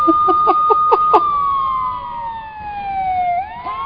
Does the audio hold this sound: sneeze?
no